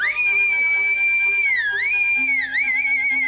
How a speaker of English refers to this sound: And now, while the whole assembly, the apes included, were convulsed with laughter, the jester suddenly uttered a shrill whistle.